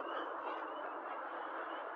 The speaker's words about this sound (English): The frogs. So, for some of my listeners who like to hear the animal nature sounds, we now have the first frog sounds.